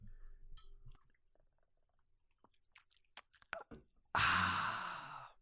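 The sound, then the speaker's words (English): A few soft, wet swallowing clicks from a long gulp of Cherry Coke Zero, followed by a loud, breathy, satisfied sigh that carries on to the end. “we just took a nice so thirsty for Jude Law. A nice long gulp of Cherry Coke Zero”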